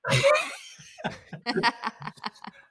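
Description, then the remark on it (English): A loud, harsh cough from a person who has had a lingering cough for 11 weeks bursts out, followed by a string of shorter, breathy hacking spasms that taper off over a couple of seconds. “Sorry. I've been just on that cough.”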